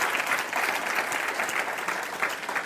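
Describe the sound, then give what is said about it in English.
An audience at a sermon applauding steadily, a dense, continuous patter of many hands clapping at once, fairly loud and sustained throughout with no voices standing out. “Can you clap better than that?”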